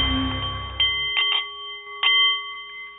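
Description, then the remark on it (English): A meditation bowl is struck several times, each strike blooming into a steady, shimmering ring that hangs in the air and slowly fades. The sound is clear, with no talking. “The meditation bowl is chiming, and that means it is time for The Art of the CEO”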